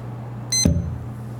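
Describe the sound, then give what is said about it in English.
A single short, high-pitched electronic beep, like a kitchen timer, cuts in briefly over a steady low hum, followed by a soft clunk and quiet background. “forgot the timer.”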